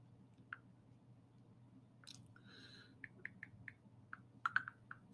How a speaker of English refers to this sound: You just hear us typing for this minute.